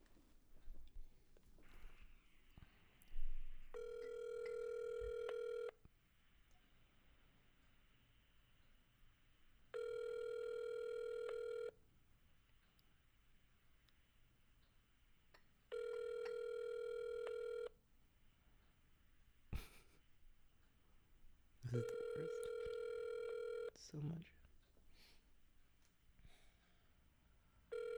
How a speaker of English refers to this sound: Yeah, I want to call McDonald's.